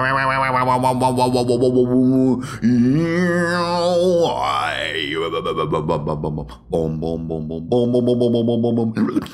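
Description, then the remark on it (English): A loud, cartoonish pig grunting sound effect, used as the cue for the RPG mainframe segment: buzzy, warbling tones with swooping pitch bends that carry on for about nine seconds, broken by two brief dips, with no talking. “That's the pig noise.”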